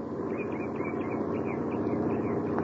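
A truck from a neighboring farm approaches a newly built bridge in the early afternoon, its engine rumbling steadily, a continuous low drone at an even, fairly loud level that holds without pause, with no voices.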